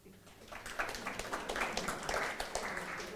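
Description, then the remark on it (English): A small crowd claps, a dense, steady patter of many hands that swells in after a brief moment and keeps going at an even, fairly soft level for about three seconds. “Clap for him.”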